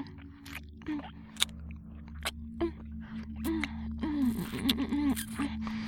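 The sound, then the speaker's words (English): Wet slurping and sucking mouth sounds of oral sex, with sharp smacking clicks and squelches, repeating irregularly over a low steady hum, with soft voiced murmurs toward the end. “Slurping and sucking.”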